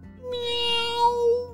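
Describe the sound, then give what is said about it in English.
A single long, drawn-out cat meow, clear, rising slightly in pitch before trailing off, with no talking around it. “So he leaned back and opened his mouth to let out a big bark. And out came, meow.”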